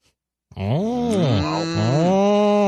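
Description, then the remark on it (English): A person imitates a cow with a long, loud, drawn-out moo, its pitch wavering and sliding, starting after a brief silence and holding for about two seconds. “They were going to give away the entire farm and all the cows, all of it.”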